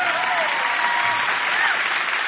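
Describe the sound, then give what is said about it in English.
An audience claps together in steady, dense applause that holds an even loudness throughout, with no one speaking over it. “We can clap for that.”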